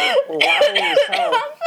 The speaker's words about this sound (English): Well, I just, it's hard to talk while you're coughing.